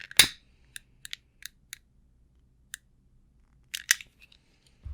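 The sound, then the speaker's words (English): Someone lighting a lavender-scented candle: a string of sharp, dry clicks at irregular intervals, like a lighter being flicked, with a louder burst at the start and another cluster near the end, no voices. “I'm gonna light it. I'm gonna light the candle.”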